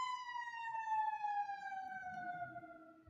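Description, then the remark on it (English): Many emergency sirens wail steadily and loud, their pitch sliding slowly downward as they pass through the city, with a low rumble of traffic underneath. “Oh my gosh, there's so many sirens.”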